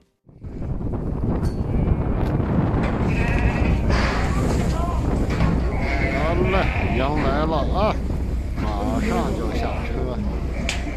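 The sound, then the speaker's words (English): A large flock of 4,000 sheep from Mongolia, brought by over a dozen trucks to Erenhot, North China, in late October 2020, bleats continuously, many overlapping calls layered into a dense chorus, with steady wind rumble and low background noise; temperature below minus 20 °C. “In late October of 2020, over a dozen trucks transporting 4,000 sheep from Mongolia landed in North China's Erenhot, the border city between China and Mongolia.”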